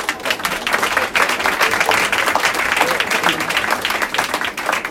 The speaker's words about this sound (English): And a huge round of applause, please.